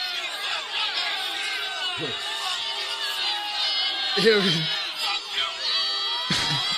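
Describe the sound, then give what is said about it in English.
A packed arena crowd roars steadily as a fighter is announced, a dense wall of cheering and shouting voices, with a few louder yells and whoops breaking out above the din. “I want to see if you guys hear the crowd. When this is when I'm getting.”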